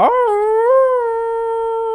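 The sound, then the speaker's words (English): A person imitates the howl of a basset hound seen on TikTok: one loud, sustained, mournful note that rises briefly at the start and then holds steady for nearly two seconds, alone. “But it's a hound dog. Basset hound. A basset hound. And he's going like this dog.”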